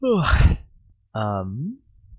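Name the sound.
yawn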